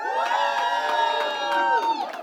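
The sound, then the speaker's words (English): A crowd cheers loudly and steadily in answer to a call for Texans fans, a dense wash of many voices with shrill whoops and high-pitched shouts rising above it, sustained without pause for about two seconds. “Woo! You can't cheer,”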